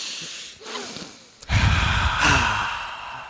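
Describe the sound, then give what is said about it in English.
A short breath is followed by a long, loud, deep inhalation, a rushing airy sound lasting nearly two seconds with no talking. “Bro, inhale, deep breath.”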